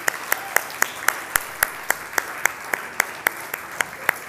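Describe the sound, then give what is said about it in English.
An audience round of applause for the people who provided food, with sharp, evenly spaced claps in a steady rhythm, several per second, over a soft wash of background noise. No one speaks. “And can we just start with a big round of applause for everyone who's looked after us with food”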